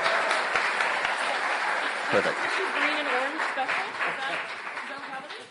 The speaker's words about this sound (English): So again, a big round of applause for Andrew Weaver representing the Greens. A big round of applause for Bryce Cassavant representing the BC NDP.